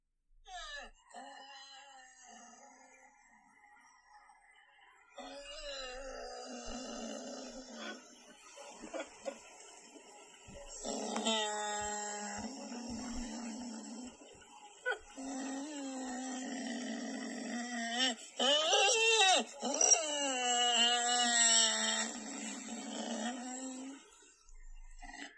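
A dog, Delilah, whimpers and whines continuously from the backseat of a car on Saturday, with rising and falling high-pitched cries and occasional low grumbling moans, fairly loud with faint road rumble.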